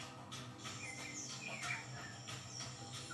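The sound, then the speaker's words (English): Costa Rican jungle ambience with scattered bird chirps and calls over a steady bed of insect buzz and hiss, fairly quiet, with no one speaking. “Jungle sound effects.”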